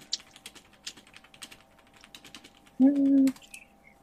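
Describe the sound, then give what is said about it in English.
Dice rattle and click in a quick, uneven flurry as they are gathered and tossed to roll damage, strength plus weapon d6, fairly quiet, with a short low hum cutting in near the end. “Go ahead and roll damage as normal, but cut it in half.”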